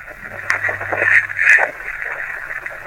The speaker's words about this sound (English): Could you hear it make out anything? Made out a bunch of static. I really didn't get anything, but I can hear the voice.